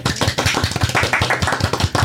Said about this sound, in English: A little applause, please.